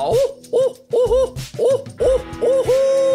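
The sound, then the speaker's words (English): A person's voice imitates a barred owl, giving a rhythmic series of about six or seven loud hoots with rising and falling inflections, ending on a drawn-out call. “I'm going to hoot like a barred owl, okay?”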